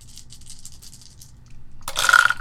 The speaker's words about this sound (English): Oh, jeez. That's a lot of dice. Alright, yeah, but one, two of them are one, three of them are ones.